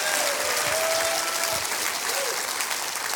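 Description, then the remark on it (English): An audience claps their hands during a church sermon, answering the preacher's call to clap and say amen, in a steady, dense burst of applause that holds at an even loudness throughout, with a few faint voices calling out underneath. “Would somebody clap your hands and say amen to that?”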